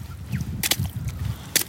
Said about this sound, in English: I love the sound of splashing puddles.